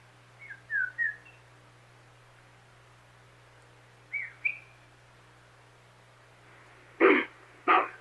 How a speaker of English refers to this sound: All right, we got whistle sequence. Ooh.